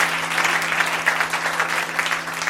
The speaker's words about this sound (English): Hallelujah. A round of applause for Elder Makua.